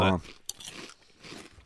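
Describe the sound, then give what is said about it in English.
Crunching and chewing of crispy Cape Cod jalapeno potato chips, eaten right out of the bag: a sharp bite followed by a few seconds of crackly mastication, with a brief voice at the very start. “Good crunch.”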